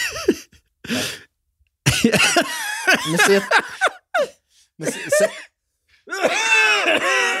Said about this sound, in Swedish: Och så kommer New Orleans hosta.